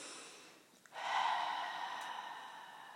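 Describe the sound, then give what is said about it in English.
A deep, airy breath, with a faint intake followed by a louder, drawn-out exhale that slowly fades. No one speaks. “God is what I'm breathing in right now and breathing out right now.”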